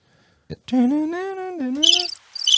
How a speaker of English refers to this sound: We haven't used that one. We have almost never used crickets. There's never crickets on this.